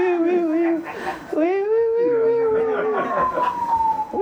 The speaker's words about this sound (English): Yeah, when the sirens are far, it always sounds like someone called the cops, but they're not sure. They're like, I think something's getting robbed.